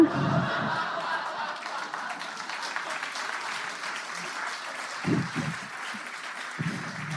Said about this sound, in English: That's why I love Beautiful Anonymous fans. They give an extended applause break for the idea of trying your best. That is the fan base of this podcast in a nutshell right there.